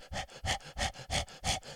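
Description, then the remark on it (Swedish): A voice imitates a dog panting in a car: quick, breathy huffs in a steady, fast rhythm, about six in under two seconds, fairly loud with no talking. “vem fan är det som flåsar egentligen?”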